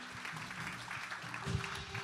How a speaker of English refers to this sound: Why don't you keep the applause going and thank Pastor Wayne for a great message and encouraging us this morning.